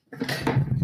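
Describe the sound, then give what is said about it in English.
A woman knocks over her whole line of drinks: a burst of clattering glass and hard objects tumbling over, a sustained jumble of clinks and knocks with bright, ringing high tones lasting under a second. “Now she has knocked over all of her line of drinks.”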